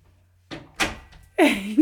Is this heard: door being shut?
yes